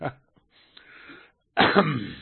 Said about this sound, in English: let me give my little COVID cough there.